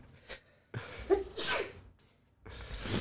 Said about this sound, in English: Come on, strep throat. Here we go. Yeah. Starting to sneeze already.